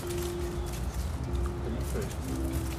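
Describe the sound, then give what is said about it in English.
A parrot named Spock makes low, steady cooing and whistling tones, a few sustained notes with short breaks, over a constant rumbling background; a voice is faintly present. “He's a parrot.”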